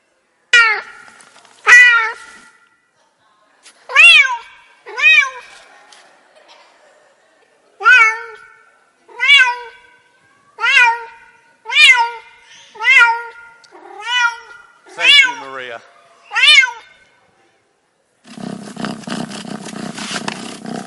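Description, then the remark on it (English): A cat meows over and over, about a dozen loud, drawn-out cries in a fairly steady rhythm, then the meowing stops and a low, rumbling purr continues for the last few seconds. “There was even purring. I just heard that.”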